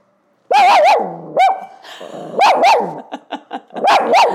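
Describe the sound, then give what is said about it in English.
A dog barks loudly in several bursts while a video is being filmed, with short high yips and a growly edge between the louder barks. No one speaks. “Filming with a dog.”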